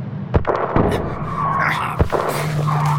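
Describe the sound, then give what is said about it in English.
A car races, chased by a Jag, with a steady engine drone and brief tire squeals, punctuated by three sharp, loud bangs like impacts or gunshots. It sounds chaotic, with no voices. “Put your foot down, see if it responds.”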